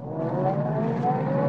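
A car engine revs as a man drives out of a parking lot, its steady drone climbing slightly in pitch as it accelerates, fairly loud for the full moment with no voices.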